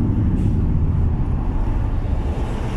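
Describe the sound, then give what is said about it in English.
Steady low rumble of a car driving, with continuous road noise that stays loud and even throughout and has no voices or distinct events on top. “But do you notice, and what's interesting to notice is that while I'm driving in this car, I don't have a window that looks down to where I am right now.”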